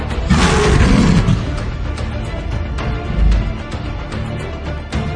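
A lion lets out one loud roar in the first second or so, followed by a low, rumbling background that lingers to the end with no talking.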